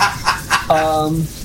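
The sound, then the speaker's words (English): A chicken gives two quick clucks followed by a longer, drawn-out squawk that slides downward, loud, with nothing else competing. “I mean, you did take a chicken.”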